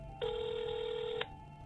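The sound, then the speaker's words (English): A single steady, buzzy ringback tone of about one second, heard over a phone line as a call is placed to the South London Press newspaper, starts abruptly and cuts off, with faint line hum before and after. No one speaks. “So I called the South London Press.”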